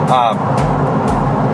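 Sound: car interior road noise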